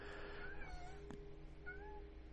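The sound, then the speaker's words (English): A cat meows a few times in drawn-out, wavering cries, quiet against a steady low background hum, with one brief knock in between. “Can you hear my cat?”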